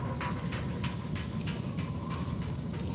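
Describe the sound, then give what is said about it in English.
A constant low, rumbling roar of waves booming and crashing against a rocky precipice, with quick splashy bursts of spray repeating throughout. Loud and unbroken, with no voices. “So appear to be safe from, risk of being pulled in by a wave or any such, but you can just now clearly hear the booming of the waves crashing against this rocky precipice.”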